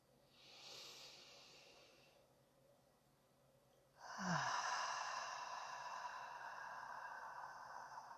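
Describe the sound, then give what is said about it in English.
Slow, relaxed breathing: a soft airy inhale, a pause, then a longer, fuller exhale that trails off gradually. No one speaks. “So while you're doing that, getting comfortable, just relaxing, letting go of the day, I'm just going to start breathing for a little bit and give you some time to settle in before we get going tonight.”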